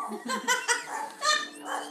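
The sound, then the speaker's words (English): A dog barks several times in quick, uneven bursts over about two seconds, moderately quiet, with no talking in between. “My dog is barking.”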